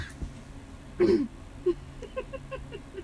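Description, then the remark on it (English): A single muffled cough into a stuffed giraffe used as a pillow, about the size of a five-year-old, followed by a few faint, brief murmurs and soft sounds. “Can you cough in something else? I sleep with this.”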